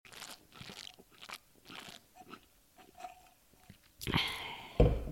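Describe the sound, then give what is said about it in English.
Mouth sounds of someone sipping a drink: a series of soft, short slurps and swallows, then a louder, noisier burst near the end, with no talking. “I like that we're taking drink breaks now. Should we just leave this audio in? Yeah. Just of you sipping.”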